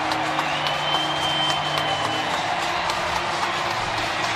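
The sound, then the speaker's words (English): A huge stadium crowd of Phillies fans at Citizens Bank Park roars and cheers after an 8-3 series-clinching win sends the Phillies to the National League Championship Series. It is a steady, dense wash of noise, with scattered clapping and whistles cutting through the sustained din for several seconds. “And this crowd can celebrate as the Phillies season will continue.”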